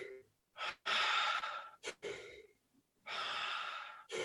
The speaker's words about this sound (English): And then there's circular breathing, like.